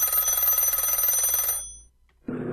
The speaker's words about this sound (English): Can somebody get the phone? Mom, get the phone!